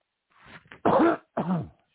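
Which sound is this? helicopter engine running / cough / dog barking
cough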